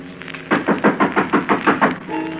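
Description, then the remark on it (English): A rapid series of about eight firm knocks on a door, evenly spaced and fairly loud, over a low steady background hum with no talking. “Someone's at the door.”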